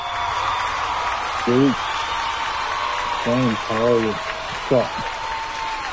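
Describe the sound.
Steady, dense audience applause for this week's guest runs throughout at a fairly even level, with a few brief spoken greetings rising over the clapping.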